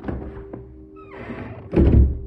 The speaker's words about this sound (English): The silence broke with the fading echo of footsteps and the bang of the front door.